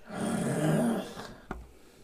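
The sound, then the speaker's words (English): A person makes a low, rasping growl with their voice at a creature, held for about a second, then it trails off into quiet broken by a short soft thump. “Just … growling at the creature.”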